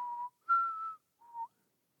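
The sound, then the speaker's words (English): A person whistles a short tune of three clear notes, the middle one highest and longest, with brief gaps between them. The whistling is alone, with no talking. “I guess I don't have to whistle because they've paused.”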